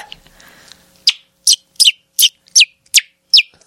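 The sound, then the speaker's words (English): A man imitates a bird call next to the mic with seven sharp, high-pitched chirps repeated at a steady, quick rhythm. The chirps are loud, and no one speaks. “Oh, do your bird sound.”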